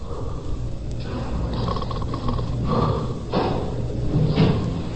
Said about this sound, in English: I would say that he was between the age of 18 and 20. I smell a faint odor of alcohol. He's breathing very heavily, as you can hear.